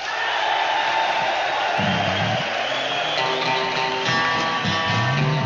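A large crowd of prisoners cheers and roars without pause in a live concert recording, a dense wash of noise at steady volume, with individual shouts and whoops rising above it every second or two.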